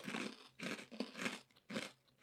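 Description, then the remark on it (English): Loud crunching of a crisp, salty snack, with several bursts of chewing in a steady rhythm, each bite a broad, dry crackle followed by brief pauses. “Yeah, because you start out way crunchy, salty.”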